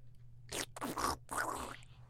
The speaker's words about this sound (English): Damn, you slurped. That was dog. You. That was not me. That was crazy, though.